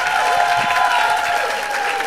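A crowd applauds steadily, a dense wash of clapping that stays loud and even for a couple of seconds without a break.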